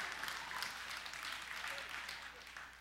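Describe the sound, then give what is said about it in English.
Dense, steady clapping runs for about three seconds without a break, moderately loud, with a hint of voices mixed into the applause: a woman clapping and calling out amen. “And if that woman keeps clapping and saying amen, I'm gonna go crazy and dance a jig up on the stage.”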